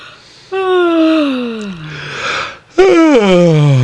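Two drawn-out yawns, each a loud voiced exhale that slides downward in pitch. The first is long and trails off, and the second follows right after, clear with no talking.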